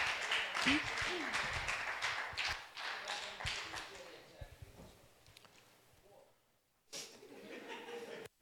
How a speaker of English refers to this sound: I want to invite up my volunteers. Can we quickly give a round of applause to my volunteers, please?